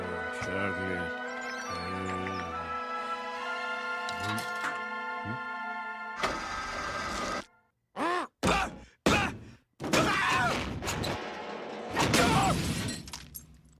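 A candy vending machine that failed to take a man's dollar comes crashing down on him after he takes his anger out on it, with loud, clattering impacts, broken by his short groans and heavy sighs, then a final noisy crash.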